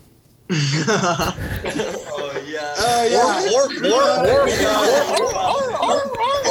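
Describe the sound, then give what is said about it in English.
Several people imitate seal barks together, a loud, overlapping burst of honking, gargly vocal calls with rising and falling pitch, mixed with bits of laughter, continuing for several seconds. “Before you go, Suzuki Honda Civic wants to know if you can all make a seal sound.”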